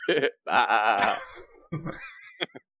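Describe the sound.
A person does a loud imitation of a sheep's bleat: a wavering, quavering 'baa' in one main drawn-out burst, framed by shorter vocal noises.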